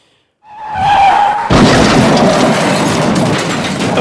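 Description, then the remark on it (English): Tires screech with a high tonal squeal, then a semi-truck crashes into a 47-car pileup on Interstate 70, 30 miles east of Kansas City, Missouri: a sudden heavy crash erupts into a loud, sustained roar of crunching metal and debris that continues without letup. “Well, 47-car pileup. This person's filming. Look at the semi-truck.”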